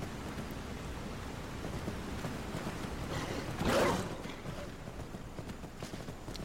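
Quick, steady hoofbeats of a galloping horse, chased by wolves, pound along without pause over a dense, hissy background, with one brief louder rush of noise near the middle.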